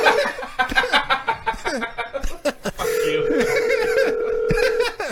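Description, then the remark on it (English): Laughter and chuckling give way to telephone dialing, a few quick key tones followed by a steady, fairly loud phone tone that holds for about two seconds. “Alright, let's call another one.”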